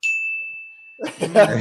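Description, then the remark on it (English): A game show buzzer effect rings out as a single bright, high ding that sustains and slowly fades for about a second, then people start talking over its tail. “The buzzer's pretty classy.”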